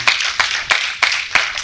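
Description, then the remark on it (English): An audience claps hands together in praise to God in a steady, brisk rhythm, about six sharp unified beats over a dense wash of scattered clapping, with no voices heard. “Give God a hand clap of praise up in here.”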